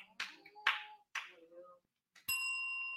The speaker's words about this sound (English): Oh, we got a bell already.